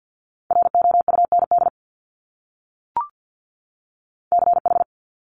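Fast Morse code at about 50 words per minute sending multi-letter phonemes: a steady mid-pitched tone keyed in two quick bursts of dots and dashes, separated by a pause with a single faint click between them. No one speaks.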